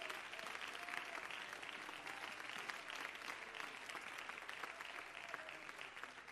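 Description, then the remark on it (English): An audience at an evening church service claps unto the Lord in a steady, dense wash of applause that holds at an even, fairly loud level throughout, with faint voices mixed underneath and no speech standing out. “Let's clap unto the Lord.”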